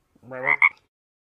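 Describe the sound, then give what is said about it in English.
A single loud frog croak: a buzzy, harmonic call that swells over about half a second and ends in a short second burst, with silence around it. “A frog in his throat.”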